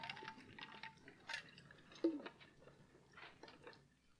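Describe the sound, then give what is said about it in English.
Someone takes a quiet drink of water from a huge water bottle while preaching: soft plastic clicks, a slosh of liquid and small gulping sounds, with no talking. “Those of you who are taking notes, you can write 1, 2, 3 while I take a drink.”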